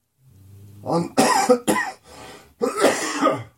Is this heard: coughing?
yes